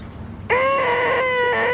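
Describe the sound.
After a brief quiet moment, a voice abruptly lets out a loud, sustained, nasal, high-pitched screech that holds a steady, buzzy tone with a slight wobble for over a second: the 'most annoying sound in the world' noise from the film Dumb and Dumber.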